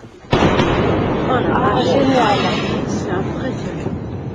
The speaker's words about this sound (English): Next, a new idea for making sonic booms quieter.